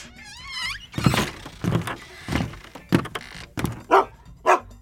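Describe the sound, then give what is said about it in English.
A junkyard dog named Slurp gives a short rising whine, then barks about seven times in a steady, evenly spaced series, loud, with no one talking. “It's always good to have a junkyard dog as a friend.”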